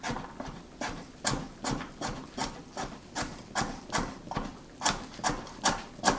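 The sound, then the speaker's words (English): A cleaver rock-chops a carrot in a steady rhythm, about sixteen crisp knocks against a cutting board, each a sharp woody tap with a brief scrape, moderately loud, with no talking. “Yeah, no problem whatsoever chopping up that carrot.”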